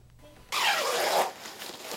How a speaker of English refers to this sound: Nurse Zhou zips up her protective suit and pulls on her gloves.